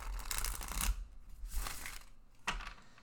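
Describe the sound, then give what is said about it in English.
A thick tarot card deck with gold leaf being shuffled three quick times: a long riffling rustle followed by two shorter, crisp bursts of flapping cards, with no talking. “I've given it three quick shuffles there.”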